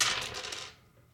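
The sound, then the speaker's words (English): Four dice clatter across a hard tabletop, a quick burst of bright overlapping clicks that settles and fades within about a second, with no talking. “So four dice.”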